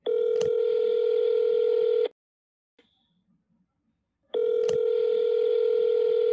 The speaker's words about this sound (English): Bro, I'm going to call this motherfucker, but dude, he never answers the phone for me. Well, just, you know, just try. All right, fuck it.